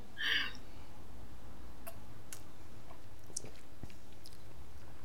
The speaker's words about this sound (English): I'm gonna have a sip